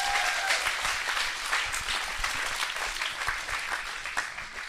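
Steady audience applause for a panel speaker fills the whole stretch, a dense wash of many hands clapping at a fairly even level without pause, with no voices standing out over it.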